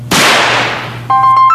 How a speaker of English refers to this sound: The fire alarm, because I'm lighting fireworks and it's starting to get smoky in here and I don't want the fire alarm to go off. You're lighting fire alarms in the room? Fireworks in the bathroom.